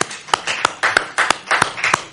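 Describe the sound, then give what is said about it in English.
An audience applauds, a steady wash of many hands clapping, with sharp, louder claps standing out at a brisk, fairly even beat. There is no talking over it. “Yeah, you can give yourself an applause.”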